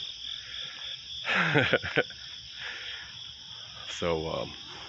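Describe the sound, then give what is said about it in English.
Crickets chirp in a steady, high-pitched drone throughout, outdoors, while a couple of louder, lower croaking animal calls break in. “I know my dad is going to call me up and say, I didn't understand any of that, what you're talking about, but I was listening to the crickets.”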